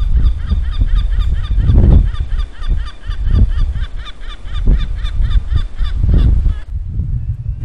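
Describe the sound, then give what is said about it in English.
A gull calls noisily in a rapid, repeated series of harsh cries by a canal path, over low rumbling background noise, then falls quiet near the end. “You can hear that noisy gull.”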